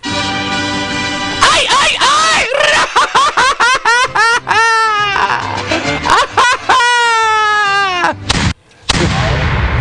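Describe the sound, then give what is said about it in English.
A person loudly imitates a chicken, squawking and clucking in rapid bursts that break into drawn-out, wavering bawks, with a steady background underneath. “Always one of them has to do that when you play the chicken dance or the hat dance”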